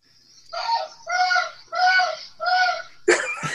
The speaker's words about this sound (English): Did you hear? Yeah. That's outside. It's a horrible scream. We will be looping that. We'll be looping that in post and replacing it with a much better scream. That was from outside audio.